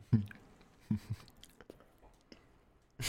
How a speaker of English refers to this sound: I think the challenge should be that we do this without any liquids. They're just going to be listening to us eating sand.